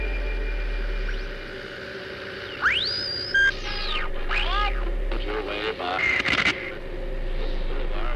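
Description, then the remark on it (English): Steady crackling radio static hisses throughout, broken by warbling whistles and rising, sweeping tones like a dial being tuned, with brief bursts of garbled interference near the end. “Listen, there's a voice hidden in the static.”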